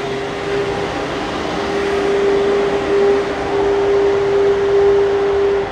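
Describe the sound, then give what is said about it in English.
A big delivery truck rumbles by with a steady, broad engine roar and a droning mid-pitched hum that cuts in and out, swelling slightly louder toward the end. No one speaks. “Always managed to hit one of those big delivery trucks coming by.”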